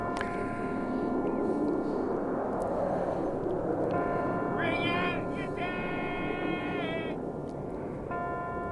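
Slow, ringing bell tones toll over a steady hiss like heavy rain, each strike leaving long sustained overtones that overlap and fade, with a fresh strike near the end.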